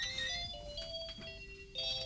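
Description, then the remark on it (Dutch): A melodic electronic telephone ringtone plays a looping tune of steady, clear tones, moderately loud, with no voices over it. “Telefoon gaat ineens. Dan gaat de andere telefoon ineens.”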